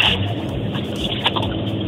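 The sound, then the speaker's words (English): A truck engine revs in a loud, steady roar with a deep rumble and a raspy, hissing top, holding level for two seconds as the driver tries to work the engine brake, which is not working, so no brake bark comes. No one speaks. “No, I was trying to get my engine brake to work, but my engine brake's not working.”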